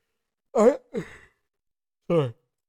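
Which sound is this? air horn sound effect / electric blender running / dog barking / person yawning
person yawning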